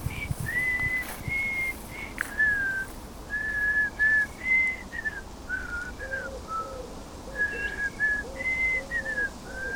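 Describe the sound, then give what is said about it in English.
A man, an obviously bad whistler, whistles a slow tune in faint, uneven, slightly wavering held notes with short gaps between phrases, set against a steady hiss of outdoor background noise. “As she approached the turn, the man began to whistle.”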